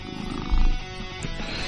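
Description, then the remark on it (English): A cat named Benjen purrs in a steady, low, rumbling drone with a faint buzzing texture, swelling briefly louder partway through. No one speaks. “and all this purring is Benjen.”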